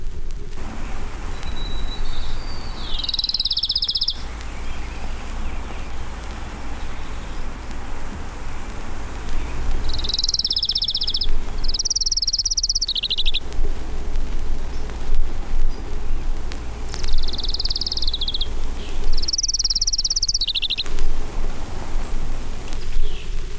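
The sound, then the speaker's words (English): An Orange-crowned warbler delivers several short, high trilling songs, repeated at intervals of a few seconds, over a steady hiss of background noise like rain or a stream. “Orange-crowned warbler.”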